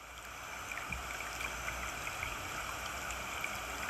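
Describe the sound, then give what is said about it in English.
A steady wash of flowing stream water, continuous, with small bright trickles and gurgles bubbling over the constant rush; no voices. “We are gonna connect to water.”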